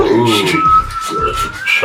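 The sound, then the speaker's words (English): A deep, steady whistle holds one low pitch for nearly two seconds, rising slightly at the end, while voices murmur underneath. “There's my deep whistle there.”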